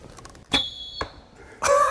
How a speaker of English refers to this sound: So he picked up a hobby, archery. He says there's something about releasing an arrow into the wind that's become, for him anyway, both calming and cathartic. Whistling arrowhead.